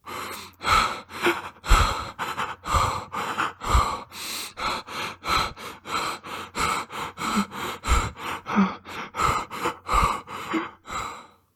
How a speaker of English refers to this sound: Naloxone knocks the opioid molecules out of the receptors and then fills up the receptor itself. In this way, the effects of the opioid are reversed. Then regular breathing can continue.